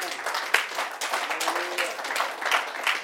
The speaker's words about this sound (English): Lord, when I see a problem, Lord, in my contact world, I say, you will give me the solution. Let's give a hand clap on that.